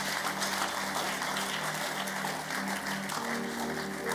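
A crowd claps in praise to the Lord, steadily and continuously, a dense rush of many hands with no pauses, holding an even loudness for the whole stretch, with faint murmuring blended underneath.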